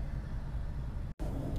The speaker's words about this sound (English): I'm currently sitting in my car with my windows down. It is a delightful 87 degrees outside.